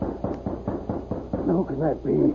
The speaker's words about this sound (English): when he heard a rap on the door.